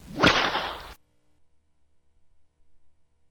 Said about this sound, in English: Now, where did I put that whip? There it is.